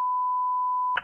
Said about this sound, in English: I didn't beep that. It was already bleeped.